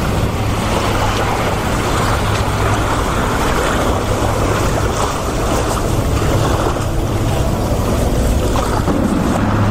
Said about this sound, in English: So tide's coming in. We always get a kick out of these houses because the water could just hit up there.